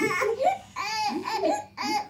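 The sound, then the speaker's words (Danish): A small child wails in short, rising bursts in a nursery, with brief breaks between the sobs and a faint babbling quality; the crying pauses a moment while a coloured feather floats down, then starts again. “Barnet slipper gråden et øjeblik, mens fjeren daler ned, for kort efter at falde tilbage i gråd igen.”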